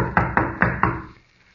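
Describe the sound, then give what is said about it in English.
Four heavy, evenly spaced blows pound on a wooden door, each one booming, with a short dull resonance after the last before it fades to quiet. “Pounding on the door isn't going to do any good either.”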